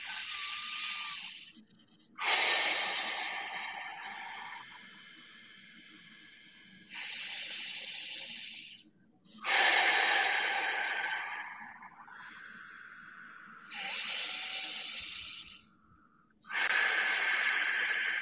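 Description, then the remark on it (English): Slow, deliberate relaxing breathing: airy inhales through the nose for about 3 seconds alternate with longer, hissing exhales through the mouth for about 6 seconds, about three full breath cycles with no talking. “Right into a relaxing, calming breathing. 3 seconds in through the nose, 6 seconds out through the mouth.”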